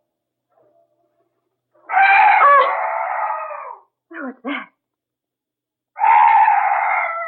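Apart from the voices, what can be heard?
weird night bird call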